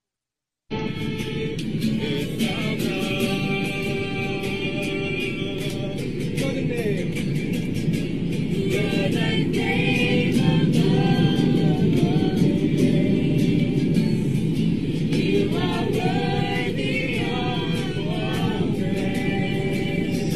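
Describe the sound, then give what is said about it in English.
A steady, loud airplane cabin rumble from a played video of a plane flying at 30,000 feet drones for the full twenty seconds, a constant low roar with wavering, higher-pitched vocal sounds rising and falling over it at intervals. “All right, so you might hear the rumbling in the background.”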